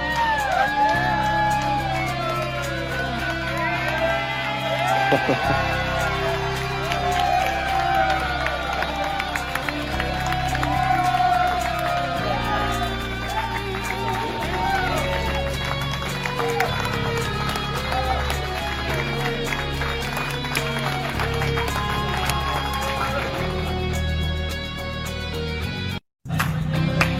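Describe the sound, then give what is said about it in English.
A large crowd of men in Jacksonville cheers, whoops and claps continuously over loud music as a man walks out of the cancer ward after ringing the bell cancer free, the roar sustained and energetic throughout before a brief cut near the end. “Obviously, the music underneath it was great. And you can just hear all this, the clapping.”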